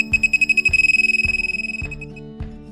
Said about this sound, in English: It's not just about the finds, it's about the adventure, the camaraderie, and the sense of wonder every time that detector beeps.